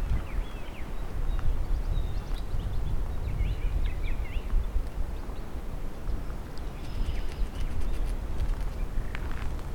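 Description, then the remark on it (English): Gray catbirds mimic other birds with scattered squeaky, varied calls, faint, heard over a steady low rumble of outdoor background noise on a sunny May day after snowfall, with a little snow on the ground. “A couple mimics here, and I think they're gray catbirds.”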